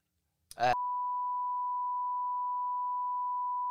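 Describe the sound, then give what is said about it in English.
A brief clipped burst of sound cuts off abruptly into a loud, steady censor bleep, a single pure high-pitched tone held unbroken for about three seconds. “All right, we could bleep it.”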